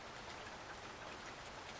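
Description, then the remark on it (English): Steady rain falls on a house and yard on a cool June morning, an even, continuous hiss with soft pattering drops, fairly quiet and unbroken throughout, with no voices. “Stupid house, she thought. Stupid yard. Stupid rain.”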